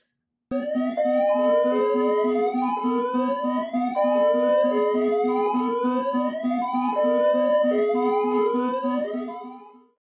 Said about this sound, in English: Because we're getting right into these live alerts and we're doing it right now. Play the goddamn siren.